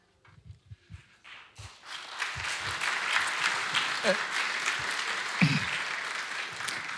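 Audience applause swells from a few scattered claps into a sustained, dense roar of clapping that stays loud and steady to the end, with a few low thumps mixed in.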